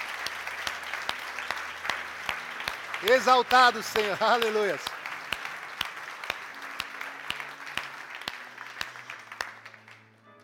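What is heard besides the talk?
audience applauding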